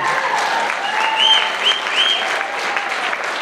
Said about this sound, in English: Restored lives. So many. Yeah, come on. We can clap for that.